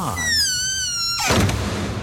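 A barn door swings shut. A long, high creaking squeal gives way to a loud, resounding bang that rumbles and rattles briefly before fading.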